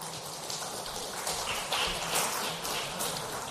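An audience applauds to welcome a speaker at a session: a dense, steady wash of many hands clapping together, swelling slightly midway and holding at an even level for a few seconds, with no voices.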